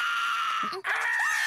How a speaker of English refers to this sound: It's a good Usopp scream.